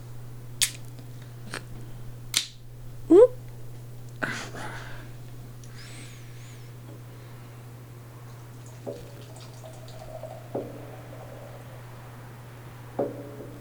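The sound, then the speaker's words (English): Imperial IPA from Neshaminy Creek Brewing of Croydon, Pennsylvania, poured into a tulip snifter glass: a few sharp clinks and a short rising gurgle, then soft splashing and scattered drips over a steady low electrical hum, with no one talking. “I'll teach you to pour beer later”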